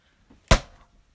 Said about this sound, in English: Your chair just cracked. My chair just literally cracked. Don't buy IKEA furniture. Damn. How old is this? Well, since we've moved here. So 9 years.